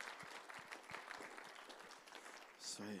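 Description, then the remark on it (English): A room full of people at a morning worship gathering applauds a speaker, dense overlapping claps sustained for a few seconds with a murmur of voices mixed in, ending in a brief louder swell. “Why don't you give him another clapping offering for this morning?”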